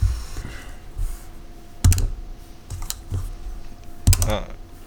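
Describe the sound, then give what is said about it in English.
Computer keyboard keys mashed as someone rolls across the keyboard, in rough bursts: clusters of dense clicking and clacks at irregular intervals, with some low rumble and faint background noise between the bursts. “It's really funny hearing you roll on your keyboard because, like, they can hear the buttons smush.”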